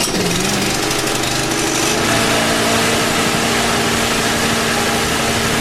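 A traffic helicopter's engine is started up and roars loudly, a dense mechanical drone that shifts in pitch early on, then settles into a steady, rattling run. No one speaks.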